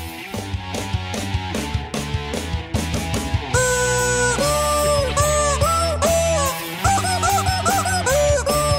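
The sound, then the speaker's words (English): Chicken clucks and squawks, loud, repeat over a steady thumping beat. Later, longer bending calls join in with the rhythm, like chickens worked into a song. “Rock on, you chickens. I love the chickens. Double shot of chickens today.”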